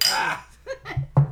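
Glasses clink together in a toast among friends, a bright ringing burst at the start, followed by a few short murmured voices.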